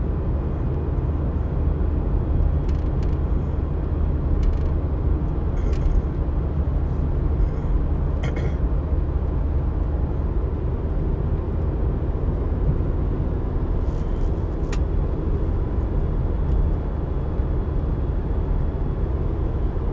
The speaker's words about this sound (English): I'm on with y'all right here, and I'm just kind of swerving and trying to avoid cars, trying to drive a straight line.